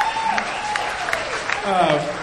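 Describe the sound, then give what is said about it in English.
An audience applauds steadily for a couple of seconds for a man being alive, a dense patter of clapping mixed with scattered cheers and whoops from the crowd, swelling slightly toward the end. “How about a round of applause for this guy being alive?”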